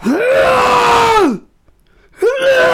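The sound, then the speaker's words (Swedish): A man's voice imitates a man straining to lift weights at the gym: a long, loud, sustained groan rising and falling, a brief pause, then a second strained groan starting up. No talk alongside it. “Ja, det är tungt, gubben, jag fattar, men du kanske ska gå ner en 3-4 kilo då och så kanske bara andas.”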